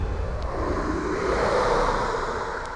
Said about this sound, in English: A gust of wind swirled around Joan, stopping her in her tracks